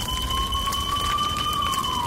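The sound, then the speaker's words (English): A fire alarm sounds, a continuous high electronic tone that drifts slowly up in pitch and back down, loud and steady over a low rumbling hiss, with no one speaking. “At least the fire alarm works!”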